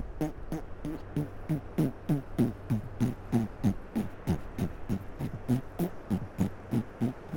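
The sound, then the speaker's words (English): A voice imitates a donkey farting with a steady train of short, low, buzzy pops, about twenty in a row at an even trotting rhythm, lasting several seconds without any talk, mimicking donkeys on Mount Bromo that farted with every step while carrying riders up the steep mountainside. “because every step the donkey made, it made a fart. And every donkey did the same.”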